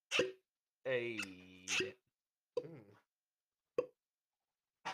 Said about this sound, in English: You know what? I'm gonna pour me some in this cup from this ice. Did y'all hear that?